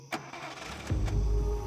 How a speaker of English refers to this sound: It is now, numb with shock, that she hears the builder's truck drive away.